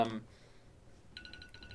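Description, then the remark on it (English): A phone alarm starts ringing after a brief burst of voice, sounding as a quick series of repeated high electronic beeps in a steady, fast rhythm at moderate volume. “Phones are ringing. Yeah. Did more players transfer? I don't know. No, it's just an alarm.”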